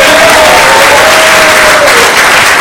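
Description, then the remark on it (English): An audience applauds loudly for the visiting pastors from different regions, many hands clapping in a dense, steady wash that fills all three seconds, with a faint sustained tone faintly audible underneath. “Give that a hand clap.”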